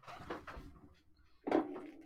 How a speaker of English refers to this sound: Ooh, I'm hearing some movement. I'm hearing some rustling. Okay. Paper.